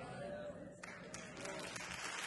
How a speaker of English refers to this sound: And they're clapping for this. Unbelievable.